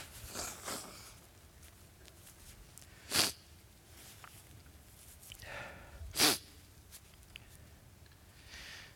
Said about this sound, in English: Last thing I want to say is this. I'm going to blow my nose first. Hold on.